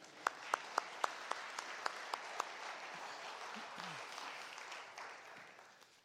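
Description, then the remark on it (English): An audience applauds in a steady, crackling wash of clapping. A few sharp, evenly spaced claps stand out at the start, then the applause continues evenly and tapers slightly at the end. “That's very good to applause for them.”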